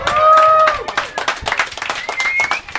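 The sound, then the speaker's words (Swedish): A live crowd claps in an uneven, scattered burst, with a few shrill whistles and whoops rising over the applause at the start before it continues as loose, irregular clapping. “Det är också en konstig applåd.”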